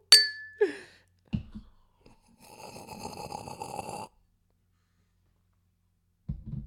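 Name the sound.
clinking glasses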